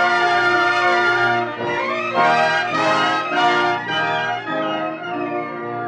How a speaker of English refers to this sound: And one day the bells began to ring. Peace. Peace came at last.